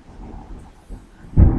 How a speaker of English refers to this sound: you might hear some lightning and some thunder.